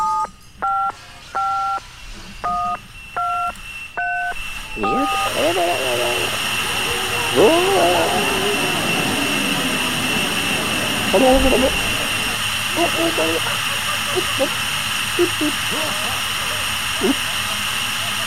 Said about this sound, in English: Static. Beep, beep, beep, beep.